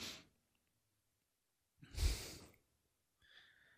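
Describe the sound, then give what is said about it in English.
A short breath, then a muffled, stifled burst of air like a held-back sneeze that never fully comes out, followed by a faint breathy sound. No talking. “Almost sneezing, but not quite.”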